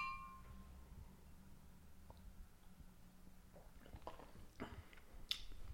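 A faint glass clink rings out at the start with a toast, followed by quiet sipping and soft wet mouth sounds as a beer is tasted, with no talking.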